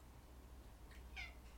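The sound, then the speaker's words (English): A cat meows twice in quick succession, a faint short call followed by a clearer, higher meow, over a low background hum with no talking. “Oh, here comes the cat.”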